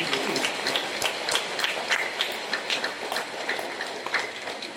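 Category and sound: crowd, warm applause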